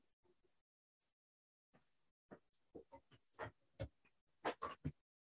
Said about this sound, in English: No, that was my cat clawing up my desk chair, my office chair.